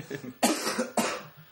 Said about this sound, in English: If you hear a lot of hacking and coughing, we all have a cold.